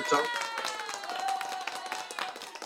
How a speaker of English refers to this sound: let the studio audience give you a round of applause for welcoming you to Straight Talk